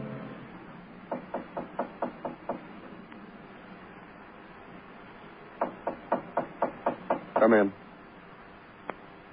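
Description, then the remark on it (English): Two quick bursts of sharp knocking on a door, about six or seven raps each, separated by a pause; the second run ends in a brief rattling flurry, over a low background hum. “Well, I knocked you.”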